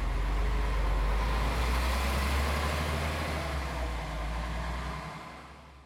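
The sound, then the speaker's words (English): A steady, low diesel rumble of school buses idling nearby, ready to evacuate residents during toxic waste cleanup work, a continuous engine drone with broad noise on top that eases off and fades in the final second. “In case anything went wrong, school buses idled nearby, ready to evacuate residents at a moment's notice.”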